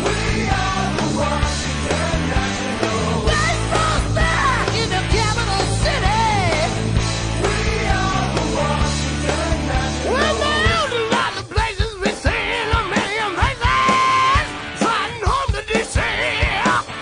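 A loud, dense hard rock song about the Washington Nationals blares continuously over the loudspeakers at Space Coast Stadium, with a singer wailing in long, wavering notes over driving instruments; the mix thins briefly near the end before the vocal soars again.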